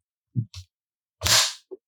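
A cheap clapperboard slate bought on Amazon snaps shut with a few sharp wooden clacks: two quick light taps, then one loud, bright crack and a small final tick, with no talking.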